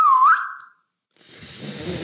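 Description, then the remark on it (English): A short, thin whistle wavers and slides upward, breaks off into a brief silence, then turns into airy, breathy blowing as someone struggles to keep a whistle going, alone. “Do you know how to whistle?”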